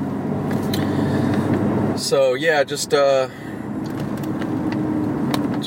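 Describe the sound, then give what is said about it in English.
A steady low rumble of road noise inside a moving car driving home, hitting traffic lights before the freeway, runs throughout, with a brief spoken phrase from a man partway through over the constant drone. “Well, I just finished up, but yeah, trying to get the fuck home. In a minute here, to just hitting every fucking light though before the freeway, so it's always fun, especially when there's nobody around on the roads.”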